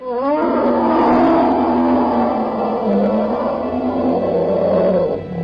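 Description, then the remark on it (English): A deep, sustained roar comes through a forest, rumbling loudly for several seconds, with a harsh growling texture that wavers in pitch before tapering off at the end. “maybe it's your bear senses, maybe it's something like that, but you hear a roar coming through the forest.”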